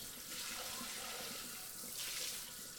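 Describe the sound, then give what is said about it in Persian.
Steady running water from a tap splashes continuously, a broad hiss with small surges, as boiled orange peel strips are rinsed and drained in a sink. No one speaks. “خب یادتون نره به گوشتی که توی مایتابه بود حالا زردچوبه اضافه کنید، خلالای پرتقال رو در کمی آب روی حرارت ملایم بجوشونید و بعد آبکش کنید.”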